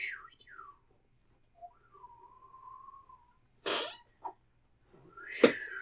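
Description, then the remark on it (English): Someone attempts a whistle and does it badly: a few squeaky descending chirps, a thin wavering tone held for about a second, then sharp breathy puffs of air as the whistle fails. “No, I think they're trying to whistle, but they're doing a really bad job.”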